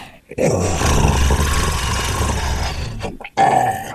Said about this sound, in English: The rest of you, you hear a low, guttural hiss behind you.